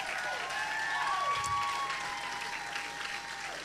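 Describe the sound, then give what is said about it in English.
A church audience applauds steadily for the people getting baptized, a dense wash of many hands clapping at once, with a few faint sustained tones, like an organ, ringing underneath. “Come on, let's give them a hand clap”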